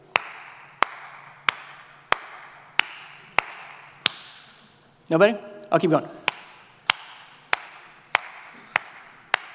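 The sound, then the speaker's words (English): Sharp hand claps beat out the rhythm of "Twinkle, Twinkle, Little Star", about a dozen in all, paused briefly while a man speaks a few words before the clapping resumes at the same pace. “So now I'm going to clap. I'm not going to tell you what the song is.”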